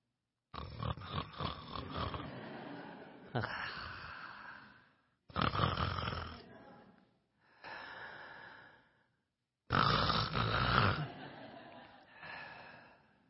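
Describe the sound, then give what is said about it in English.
Loud, rasping snores from a woman who has fallen asleep lying in Shavasana pose in a yoga class repeat in a slow rhythm, five or six drawn-out breaths with short silent gaps between them, with no talking. “And when the teacher starts to speak again, the bell rings in the class, she recognizes she's fallen asleep.”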